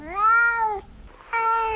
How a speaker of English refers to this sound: The cat that's talking now is Numa, and she would like to enlighten you with her views.